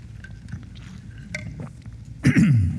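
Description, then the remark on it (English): Someone takes a sip of water: a few soft mouth clicks and faint slurping, then a louder gulping swallow near the end. No one speaks. “excuse me, let me just grab a little bit of water.”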